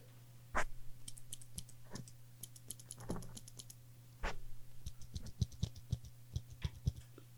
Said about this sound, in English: Here's a mechanical pencil.